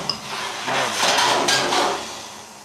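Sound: dishes clattering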